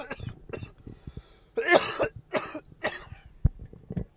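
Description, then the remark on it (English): Someone coughs hard several times, a burst of harsh, raspy coughs with throat clearing mixed in, followed by a few smaller coughs and gasping breaths. “I'm going to fucking cough right now.”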